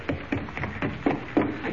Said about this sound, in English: Sir, that's a fuse sputtering all right.